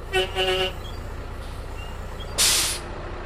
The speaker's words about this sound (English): This tour bus, coming from downtown San Francisco, is carrying just a handful of the 2 million or so annual visitors to these forests.